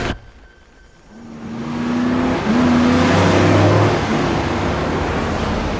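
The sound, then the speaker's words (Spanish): Two pickup trucks, one a green Ford Lobo, approach from behind a bus, their engines growing louder and their pitch climbing as they accelerate hard, ending in a steady roar with a rushing, windy wash of road noise and no voices. “De pronto, dos camionetas se acercan por la parte de atrás del autobús.”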